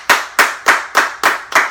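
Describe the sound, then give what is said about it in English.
Six sharp, loud hand claps in a steady, even rhythm, each a crisp slap that decays quickly, with no talking. “Let's make some noise.”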